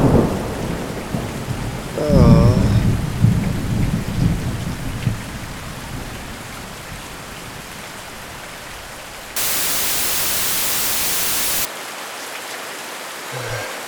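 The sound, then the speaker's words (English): Heavy rain that has been falling for about 40 minutes without lightening pours down in a steady, dense hiss, with a low rumble of thunder near the start and a brief burst of harsh static-like noise later on. “The rain hasn't lightened up, but I'm still holding strong.”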